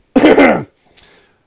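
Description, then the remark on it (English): A loud throat clearing lasting about half a second, harsh and rasping, followed by a brief softer click and breath after a short pause. No talking. “Let me clear my throat.”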